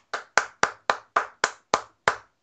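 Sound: clapping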